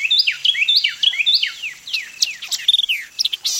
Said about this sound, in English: By this time, other birds have awakened, and Carolina wrens and white-eyed vireos are declaring their territories.